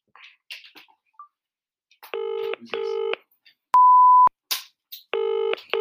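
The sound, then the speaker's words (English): Phone call tones: a few quick keypad-like blips, then pairs of buzzy ringing bursts with a single steady beep between them, loud, with no one talking. “Ring, man. I'm going to spam.”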